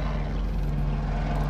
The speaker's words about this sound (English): Helicopter.